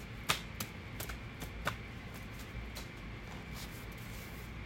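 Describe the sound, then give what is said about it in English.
A deck of tarot cards being given a last shuffle: a quiet run of crisp papery clicks and flutters, with two sharper snaps early on, then a softer, steady patter of card edges. No voices. “Last shuffle.”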